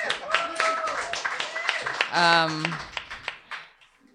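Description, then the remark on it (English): Steady, dense clapping from a group of people after a reading, fairly loud and continuous, with a brief voiced cheer midway before the applause tapers off toward the end. “I'm going to keep clapping.”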